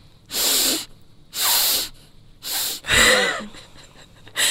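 Several sharp, close-up sniffs in a row, each a short airy inhale with brief pauses between, as someone smells one thing after another; no one speaks.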